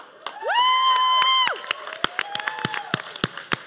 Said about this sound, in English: Hold for rapturous applause.